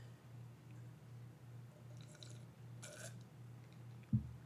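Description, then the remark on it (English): Quiet wet swallowing sounds from someone gulping a big drink of water, a couple of soft liquid gulps followed by a short thump, over a steady low hum with no talking. “I took too big a drink of water.”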